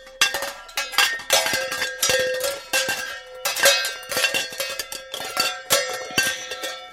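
Metal cooking pans clang together over and over in a busy, irregular clatter, each strike ringing with a bright metallic tone. Loud throughout, with no voices.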